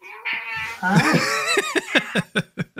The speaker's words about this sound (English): Cat is misbehaving. Jesus Christ, come here, dude.